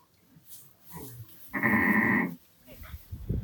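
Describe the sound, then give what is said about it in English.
A single loud sheep bleat, a wavering baa lasting under a second, rises out of quiet outdoor background noise on a Cornish sheep farm in Trelawney Benefice, where a farmer is driving a few sheep with his dogs, with faint murmuring voices before and after. “and he's just going to be driving a few sheep for us with his dogs here.”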